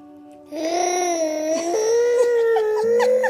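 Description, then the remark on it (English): A child's voice imitates a growling creature's roar, a sustained, wavering, howl-like cry held for about three seconds, fairly loud, with no other talk. “You sounded just like a little Chewbacca.”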